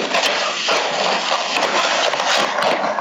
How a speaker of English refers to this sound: Okay, it's stopping. What's going on? I'm stopping my rustling. Sounded like an ice bag opening. Yeah, well, how did you know? I mean, I have my room's full with ice bags here.